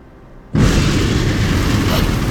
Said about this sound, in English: Stop the storm! Reset the sky! What was that? I reset the sky as you requested. What about the lightning?